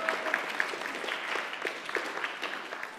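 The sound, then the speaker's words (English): An audience claps steadily for a girl being introduced, about three seconds of dense, even patter of many hands at moderate volume with no voices over it. “So, you can clap for her if you want to.”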